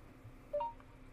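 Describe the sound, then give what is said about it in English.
A quick two-note rising electronic chime of a phone's voice assistant starting to listen without being asked sounds once at moderate volume over a faint background hum. No one speaks. “Phone listening when I didn't ask you to listen.”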